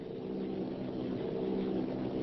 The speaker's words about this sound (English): Machines are close together now, and we're ready to attack. Planes circling, ready to strike. 1,000 yards and we'll be over the first.